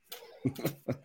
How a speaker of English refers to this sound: Actually, I'm ill. So if I keep coughing, I apologise.